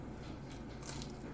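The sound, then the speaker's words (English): A big, crunchy bite into an egg roll, with a brief crackling burst of crisp shell breaking amid soft chewing noise, heard alone without any talking. “I did a big bite on purpose.”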